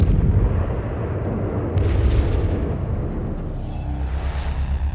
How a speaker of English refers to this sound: You should experience lots of explosions with no body parts. Parents should be ready to cover their ears.